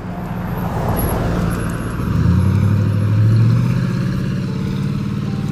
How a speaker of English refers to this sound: Car coming this way. We'll wait for the car to go by.